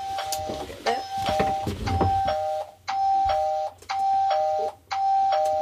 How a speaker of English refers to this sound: These chimes are the ding-dongs, and they announce arrivals and departures. Well, this computer screen is telling me which kākāpō are in their nest or which kākāpōs have left their nest.